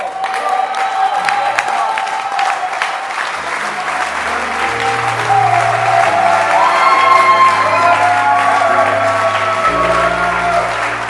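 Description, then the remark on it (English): A church audience in Ayensu River, standing, claps steadily and loudly for their pastor for several seconds, with scattered whoops and cheers rising over the applause and a low sustained musical tone running underneath. “So today, stand to your feet and let's clap for our pastor.”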